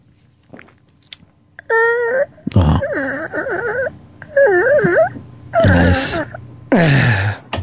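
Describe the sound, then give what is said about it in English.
A voice imitates a creaking door opening with a run of wavering, warbling squeaks and groans that rise and fall in pitch, delivered in several loud bursts separated by short pauses. “Do a door opening.”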